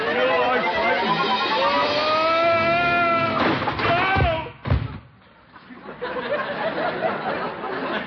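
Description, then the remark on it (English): A drawn-out, wavering vocal cry gives way to a person tipping over in a chair, the chair landing with two heavy thuds, followed by a brief lull and then low background noise. “Yo, I tipped over in my chair.”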